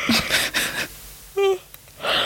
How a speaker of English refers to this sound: So sorry. That's my mood. I'm yawning like I've been doing so much today. I've literally done nothing. Bare minimum.